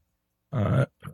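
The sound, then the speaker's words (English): A single rough, throaty cough from someone under the weather, loud and lasting about a third of a second, followed by a shorter, softer burst after a brief pause. No talking accompanies it. “Apologies for the cough there.”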